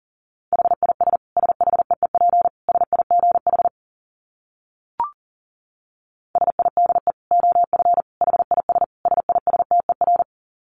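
Rapid Morse code beeps at 40 words per minute on a single steady mid-pitched tone, sent fast in two long bursts of dits and dahs separated by a short pause with a brief click; no one speaks.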